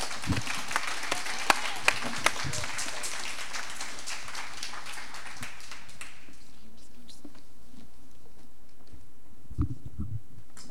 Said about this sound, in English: Can we clap for these young children?